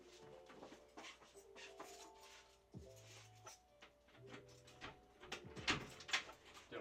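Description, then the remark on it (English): A door being opened, with rattling handle clatter, a couple of brief squeaky whines, and a few sharp clacks near the end. No one speaks. “I got to open this door real quick.”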